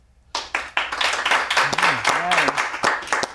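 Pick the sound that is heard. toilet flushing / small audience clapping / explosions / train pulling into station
small audience clapping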